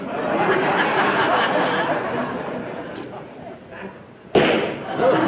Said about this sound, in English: Wait a minute. I want to shut the door. Wait till I shut the door.